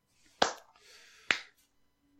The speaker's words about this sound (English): Golf clap. Golf clap.